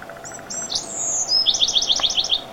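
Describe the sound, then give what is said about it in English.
A bright, melodic bird song with high whistled notes and a quick run of repeated trills, clear, heard alone with no talking. “Okay, so crow doesn't sound very nice, but did you know that in the olden days, the crow had a beautiful song, kind of like this?”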